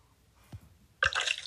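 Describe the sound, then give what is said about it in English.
A single soft drop of water lands in an ASMR video, followed a moment later by a brighter, wet splash of water that lingers briefly, fairly quiet, with no voices. “Ugh, why does this person like water?”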